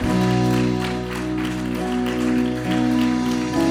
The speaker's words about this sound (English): You can clap for these people. Come on.